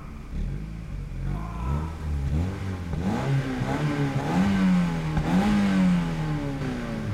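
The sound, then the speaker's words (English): A car engine roars and revs as the accelerator is stamped on, its pitch climbing and dipping in repeated surges as it accelerates hard, loud, with a clattering mechanical undertone and no voices; at night in storming winds. “The car lurched into life and pitched forward, gaining speed as the accelerator was stamped on with a fierce determination”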